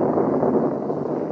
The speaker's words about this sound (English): It must be going to rain. It's thundering. Just natural thunder.